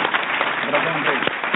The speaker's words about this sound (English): A big applause for our panelists.